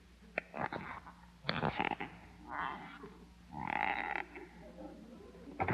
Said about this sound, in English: Squeaky shoes, 20 cents.